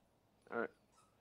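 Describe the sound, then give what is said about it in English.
A dog gives one short, high-pitched whimper, a quick tonal whine lasting a fraction of a second, heard alone against a quiet background. “I have to take care of my dog now.”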